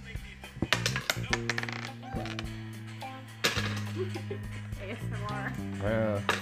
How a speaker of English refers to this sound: Some nice dice sounds.